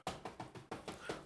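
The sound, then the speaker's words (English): A quick, steady series of about seven firm knocks on a door, fairly loud, with no voices. “That's like, I think that's just niggas knocking on the door and seeing like just what they could do.”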